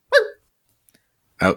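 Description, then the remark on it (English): Two short, sharp dog barks at the end of a jingle, separated by about a second of near silence, fairly loud, with no talking. “Oh, dog noise at the end as well.”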